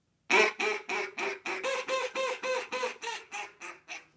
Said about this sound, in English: But what's cool about it is just a lift of my finger, I can sound like a different duck. So, again, this would be a little quieter, but you'll see what I mean here.